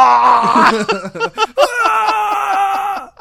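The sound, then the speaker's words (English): A woman's high, anguished scream from a movie scene that breaks into choppy, sobbing bursts, then stretches into one long wavering wail with a rapid pulsing tremble before cutting off, with no talking. “You know, I want to hear that scream in every fucking movie.”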